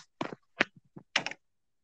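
Quick bursts of computer keyboard typing at night, with several short clusters of crisp key clicks separated by brief pauses and no talking over them.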